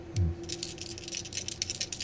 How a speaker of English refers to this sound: And here comes that boating roll. I can hear those dice.